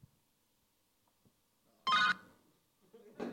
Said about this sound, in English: Is that Michael Caine's phone?